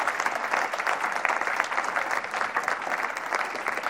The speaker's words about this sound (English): So can we, if you're in the kids team actually, can you stand up? Not Tots just at the moment, Sunday kids team. Can you give them a huge round of applause of thanks for what they do?